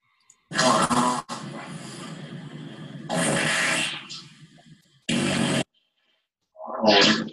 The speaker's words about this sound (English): There you go. That was called the nuclear fart button.